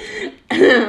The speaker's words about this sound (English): excuse me, sorry, I'm a little bit sick, I guess, because I'm starting to cough.